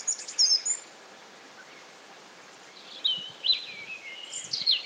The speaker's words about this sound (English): And the bird song is just beautiful from the top of this lovely hill. And again, Germany, quite different, quite unique in the sounds there than our own bird songs.